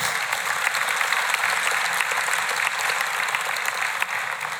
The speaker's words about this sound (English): And give the Lord a hand clap of praise.